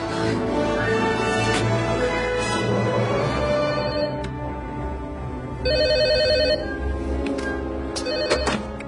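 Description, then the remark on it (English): A telephone rings with a bright, warbling electronic tone, one clear burst standing out midway over a steady, dense background hum of music or ambience. “The phones are working.”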